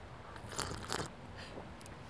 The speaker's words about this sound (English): I'm usually not a sipper. I did that for the microphone.